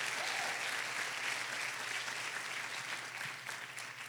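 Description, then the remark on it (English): An audience applauds for Jesus steadily, a dense wash of many hands clapping at once that holds for several seconds before easing slightly toward the end, with no voices standing out. “Give him a strong round of applause.”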